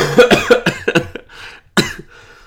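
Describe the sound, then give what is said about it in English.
A harsh coughing fit from a person who is sick: a rapid string of chesty coughs, a brief raspy pause, then one more forceful cough and a wheezy trailing breath. “As I fucking cough up a lung.”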